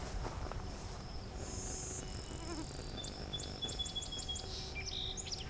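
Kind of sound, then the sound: bird, song sparrow singing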